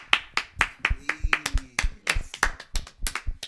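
A small group claps steadily for a few seconds to welcome a guest, sharp loud smacks coming quickly and a little unevenly, with a faint voice sounding briefly partway through.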